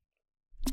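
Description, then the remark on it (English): After a moment of silence, a single short slurp of a drink through a straw, a brief wet sucking noise with no one talking. “Just got some water, gonna take a sip of my coffee with my straw.”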